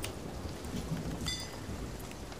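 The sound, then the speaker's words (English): Steady, dense rainfall hisses continuously, with a low rolling rumble of thunder underneath and a few brief bright ticks; a video game storm with no voices. “It's cause the storm, mate. We're in a storm.”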